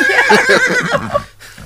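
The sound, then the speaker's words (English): A horse whinnies loudly, a long shaky neigh with a wavering, falling pitch that trails off into a brief breathy snort at the end. “They added horse stables.”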